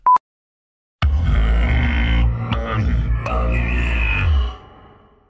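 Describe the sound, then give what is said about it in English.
A loud, drawn-out vocal sneeze lasting a few seconds, rough and strained with a voiced, grunting quality, following a short beep and fading out at the end. “That's you? Gesundheit.”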